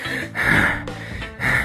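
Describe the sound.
A storyteller imitates a wolf panting, exhausted after chasing Rabbit: three loud, breathy, rasping huffs in quick succession, heavy and rhythmic, with no words spoken.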